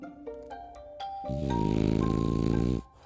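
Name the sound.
french bulldog snoring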